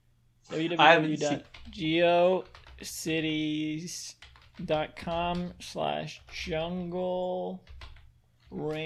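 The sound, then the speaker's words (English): Keyboard typing clicks away in quick, irregular bursts as someone types in a web address, beneath a person talking, the tapping partly buried under the voice. “I'm typing this in right now.”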